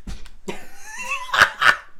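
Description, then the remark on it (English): A dog in the room lets out a drawn-out whine, then two sharp, loud barks in quick succession, with no one talking. “Do you want to take the dog with you?”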